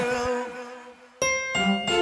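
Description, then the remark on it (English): A phone rings with a bright, bell-like chime: a lingering tone fades, then three quick ringing notes strike in succession, clear with no voices. “Oh, hang on, Ben, we got a phone call.”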